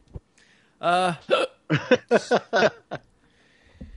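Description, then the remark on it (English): A quick run of about six sharp, voiced hiccups, fairly loud, bunched together over two seconds with short gaps, framed by near silence and a faint click or two. “I'm trying to get rid of these hiccups.”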